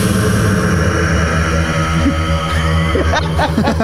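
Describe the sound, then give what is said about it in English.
A pop song slowed down 200%, smeared into a loud, steady droning wash with low sustained tones and faint warbling pitch bends near the end, almost like rushing noise. “It just sounded like white noise.”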